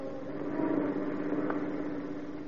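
A car engine hums steadily as the vehicle travels along, a constant, moderately loud drone with no voices and no change in pace.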